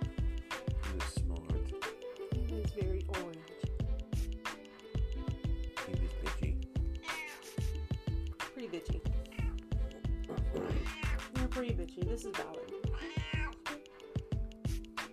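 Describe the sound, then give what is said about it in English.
A male cat gives several drawn-out meows over a steady, rumbling purr that runs throughout, while a person speaks briefly. “Well, he's purring while he's meowing.”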